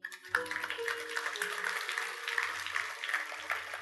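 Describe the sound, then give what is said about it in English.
An audience bursts into steady clapping, a dense crackle of many hands that begins abruptly and continues at an even, moderately loud level throughout, with a faint low hum underneath. “That's a good place to clap.”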